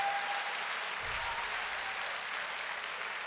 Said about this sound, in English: Clap your hands and give praise.